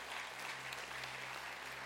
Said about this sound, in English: But we don't clap for them. We clap because God has gifted them, and all glory back to God.